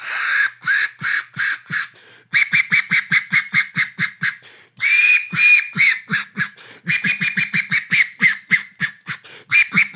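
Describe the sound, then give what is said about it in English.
Rapid, rhythmic honks from a goose call blown turned around, in four loud bursts of repeated clucking notes with brief pauses between, clear with no talking. “Turn the call around, it sounds.”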